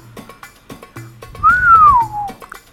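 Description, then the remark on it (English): A man whistles a single clear note that rises briefly then glides steadily downward, prominent, with faint background noise and a few soft clicks around it. “Buddha whistled as his eyes failed into the arrangement of furniture”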